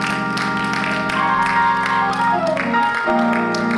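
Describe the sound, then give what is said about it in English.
An audience claps their hands in a steady rhythm to praise God, the sharp claps layered over loud, sustained organ-like chords that fill the whole clip without any talking. “Open up your mouth, lift your hands, clap your hands, and praise God for what he's about to do.”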